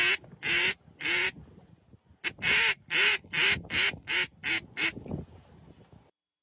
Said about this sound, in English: I love Labs. Look at him here. He knows how to use his own duck call. For you audio listeners, this is a lab blowing it himself.